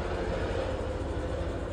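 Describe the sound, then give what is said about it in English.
Military helicopters flying overhead in Ukraine produce a steady, heavy low rumble with a fast, rhythmic throb running through it, continuous and fairly loud, with no voices. “This is what people here in the Ukraine, military helicopters, keep Ukraine in your prayers.”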